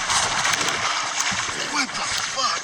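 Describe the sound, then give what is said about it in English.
A loud splash as someone plunges fully clothed into a swimming pool, with a satchel on and a phone in his pocket, followed by churning, sloshing water, with excited voices shouting over the commotion. “Nigga skydived into that pool.”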